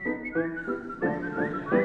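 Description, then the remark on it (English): A short whistled melody in a song, with a few rising, sliding notes in quick phrases, steady in volume, with fuller tones underneath and no speech. “We whistle and we hum, beat time with the drum.”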